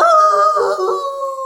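A hound dog howls in one long, steady, mournful note that sags slightly in pitch, loud, with no voices.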